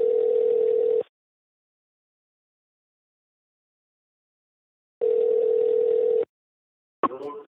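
A phone's ringback tone purrs twice as an outgoing call is placed to bring a guest onto the Reduced Lunch Action Sports News Desk show, each steady buzz about a second long with a four-second gap of silence, then the line clicks as someone picks up.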